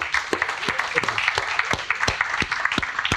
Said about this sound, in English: So can I get a massive round of applause